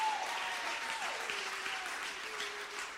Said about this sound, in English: Oh, clap your hands if you believe it.